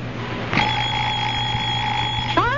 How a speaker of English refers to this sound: 4 a.m., time to go fishing. I'll murder that alarm clock. It's a wonderful alarm clock. Big Ben never forgets to get you up. I'll pull a plug. Big Ben doesn't need electricity. I'll batter its batteries. No batteries. Big Ben's T-wound,